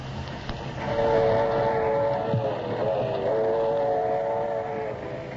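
A train rumbles along steadily while a sustained whistle blows over it with a layered, harmonic tone, fairly loud, with no voices.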